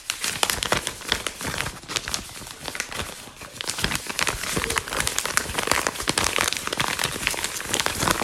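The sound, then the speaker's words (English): Continuous rustling and crinkling of paper pages being shuffled and flipped while searching for an article, fairly loud, with dense irregular crackles throughout and no voices. “You gotta, you know, you can shuffle through. Oh, where's that article I wanted to read?”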